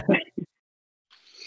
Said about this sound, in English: No, my water bottle hit the side of the table.